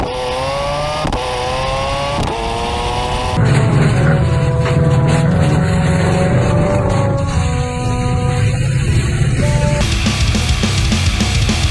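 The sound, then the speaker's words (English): A turbocharged race car engine revs hard, its pitch climbing in stepped rises through gear changes, then holding a loud, dense roar with raspy harmonics for several seconds before shifting again. “Obviously, it's turbocharged, but when you're reefing through, it doesn't sound like a turbocharged engine.”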